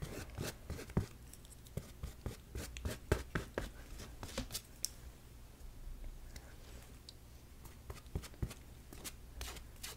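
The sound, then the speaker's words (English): A paintbrush scratches over dried paint of a painted lightning design in quick, irregular strokes, with crisp dry ticks and rasps over a steady low hum. Nobody speaks. “Looks like a lot of the lightning has dried, so I think it's okay to brush over it now.”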